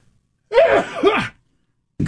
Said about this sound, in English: Uh-oh, hold on. I'm going to sneeze.